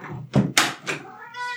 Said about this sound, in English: Meow. Hi, kitty. Meow.